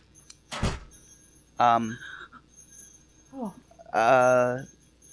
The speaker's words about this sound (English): So, here he is, guys. Coming in through the door now, it's Santa Claus!